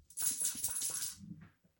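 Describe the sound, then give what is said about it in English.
A fancy coin is dropped onto a hard tabletop and spins, giving a bright metallic ringing rattle that whirs for about a second before it settles and goes quiet. “I'm going to drop it and make it do the thing.”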